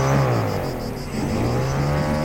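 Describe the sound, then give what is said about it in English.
A loud airboat motor drones steadily, its pitch sagging briefly before revving back up into a strong, buzzing roar that holds to the end. The jerry-rigged, patched-over airboat from the 2000s has had its combustion engine replaced with a Tesla electric motor and rides into swamps at night. “they continued on in an airboat he'd parked nearby, a jerry-rigged, patched-over beast from the aughts.”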